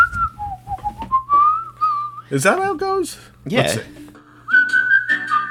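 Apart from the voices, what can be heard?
person whistling a tune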